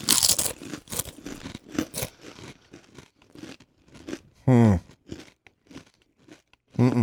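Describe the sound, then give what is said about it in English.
Loud crunching as big, thick tortilla chips are bitten and chewed, irregular sharp crunches over several seconds, with a couple of short voiced sounds between bites. “I feel like there's been a little bit more crunch than usual to some of these, and not like a stale crunch, but yeah, this one they're looks a like, heftier chip.”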